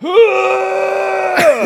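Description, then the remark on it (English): A voice imitates vomiting with one long, strained retching groan that holds a steady tone for over a second, then breaks into a rough, sputtering gag at the end. “And so, like, when I throw up, it sounds more like this.”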